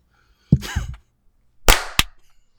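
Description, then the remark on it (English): A soft thump and a brief vocal sound come first, then a sharp, fairly light, weak hand clap followed quickly by a second short smack, with quiet between; a microphone pop filter was accidentally hit during the clap. “That was a weak clap.”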